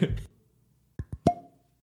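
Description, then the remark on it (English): The cork of a George Dickel whiskey bottle pops out with a few quick plops, the last one leaving a short ringing tone, just after a brief burst of voice. “Well, before we get started, let's pop open this Dickel.”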